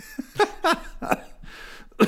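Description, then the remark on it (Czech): A run of four or five harsh, raspy coughs in an irregular series, each a short loud burst with a slightly voiced edge, separated by brief quieter pauses; no talking. “a zase spolu začnu nahrávat a kašlám.”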